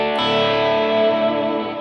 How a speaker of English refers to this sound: take this D chord, and of course I know I can make that into a sus2 by taking my middle finger off